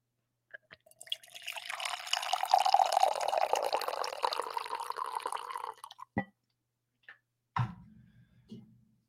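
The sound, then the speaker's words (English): A liquid is poured steadily into a glass for about five seconds, the gurgling pitch rising as it fills, followed by a few sharp clinks and a short thud. No one speaks. “You guys want another pour? This is for the audio listeners out there on In a Vacuum podcast.”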